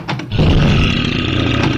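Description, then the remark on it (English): A deep, rough growling roar of a semi-trained grizzly bear at the front door, loud and sustained for over a second after a brief rumbling start, with gritty low tones and a raspy upper edge. “No, just the grizzly.”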